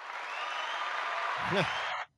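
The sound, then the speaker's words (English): Steady applause from a crowd fills the whole stretch, dense and fairly loud, with a brief vocal whoop near the end before it cuts off abruptly. “the crowd applause.”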